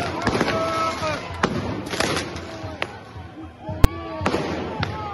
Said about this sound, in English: Firing tear gas into the pensioners. Explosions taking place.